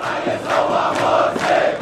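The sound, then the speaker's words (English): A vast crowd of tens of thousands of Muslim Brotherhood supporters roars in Tahrir Square, Cairo, Egypt, gathered for Friday prayers; a dense wall of many voices rising and falling in waves, with chant-like swells through the continuous din. “Hundreds of Brotherhood supporters camped in Tahrir Square last night, and the crowd swelled into the tens of thousands for Friday prayers.”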